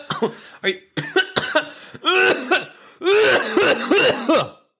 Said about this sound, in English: Sorry, it was a COVID. I don't ever cough.